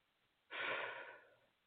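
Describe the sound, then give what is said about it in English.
A single deep breath, fairly loud, rushing out in one long airy exhale that swells quickly and then tapers off over about a second, with no talking around it. “And just FYI, I do a lot of deep breathing to help move these processes along.”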